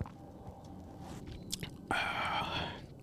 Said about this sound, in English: I got the pineapple joint. It's not bad. It's gluten-free. It's gluten-free. We're off to a healthy start. Let's see. Take another sip.